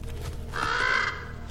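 A single harsh, drawn-out raven caw lasting about half a second, loud and raspy, rising out of a low steady background rumble with no talking.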